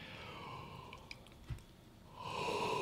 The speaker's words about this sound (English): I yawn just thinking about it.